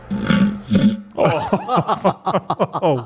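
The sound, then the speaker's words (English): A loud, hollow, roaring fart comes in two quick rasping bursts with a low buzzy rumble, then voices break in right after, chattering and laughing. “Fart hole three.”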